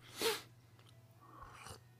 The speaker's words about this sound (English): Let me get a sip of coffee.